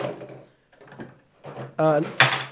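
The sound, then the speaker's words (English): Clattering and wooden knocks as objects tumble over on a desk, ending in a sharper, louder clunk, with a voice murmuring in between. “I'm just knocking everything over now.”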